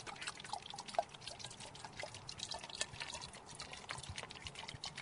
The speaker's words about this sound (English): Well, let's fill the bottle with water.